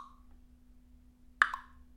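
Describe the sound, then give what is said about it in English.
A single hollow tongue cluck made with the mouth, a sharp, fairly loud pop with a brief ringing tail, heard on its own against a faint steady hum. “So people who are doing the cluck click, which by the way, phoneticists have not named, because no click languages use cluck clicks.”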